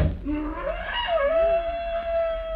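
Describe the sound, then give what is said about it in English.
A pack of trained black panthers scream in long, wailing cries that rise and bend in pitch, overlapping one another before settling into a sustained, steady high note, with a low rumble underneath and no talking. “Why do the panthers scream?”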